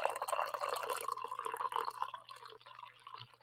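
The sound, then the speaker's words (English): The last of the coffee is poured on a rainy morning in New England, in a short, steady trickling stream that splashes and gurgles for about three seconds. It then thins out and stops, with a faint low hum underneath and no talking. “I'm almost out of coffee. I can't even give you guys a proper ASMR. I guess I have enough here for that.”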